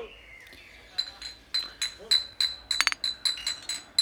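Glass bottles clink together repeatedly in a toast at a summer gathering in a garden in Aarhus, Denmark, a quick series of bright, ringing taps with a few rapid clinks bunched near the middle.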